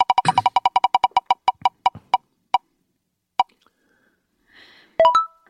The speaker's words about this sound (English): Oh, we're spinning the Rant wheel. Oh, no.